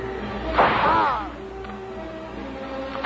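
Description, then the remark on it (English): A single loud whip crack with a brief whooshing tail, followed by a couple of faint, sharp snaps over a low steady background. “It must be anchor with a whip.”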